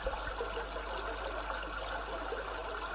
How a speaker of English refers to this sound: Maybe this time shut your eyes and allow the sounds of the brook to just wash over you. Focus on the way the water is rushing over the stones, constant, and yet the sound is changing and varying slightly.